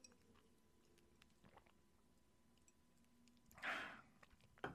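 sipping water

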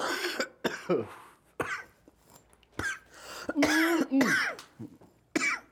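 coughing

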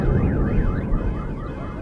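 car alarm going off

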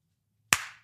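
hand clap

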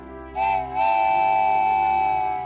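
steam train whistle

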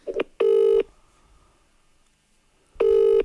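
telephone keypad dialing tones

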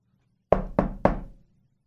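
knocking on a door

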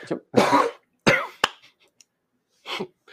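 coughing

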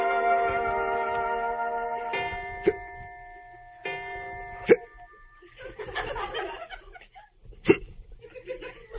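hiccups

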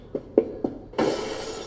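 glass window shattering

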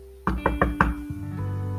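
knocking on a door

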